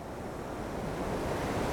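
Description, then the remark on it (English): Rough surf past a lighthouse crashes steadily against a rock, a continuous churning roar of waves with gusty wind noise mixed in and no voices. “And you just hear seabirds and the waves crashing against this rock as the surf is a little bit rougher past the lighthouse, and the sort of unsettling silence that follows, where you don't hear any call back”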